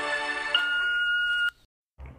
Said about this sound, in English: Please leave a message at the beep. I must be out, or I'd pick up the phone.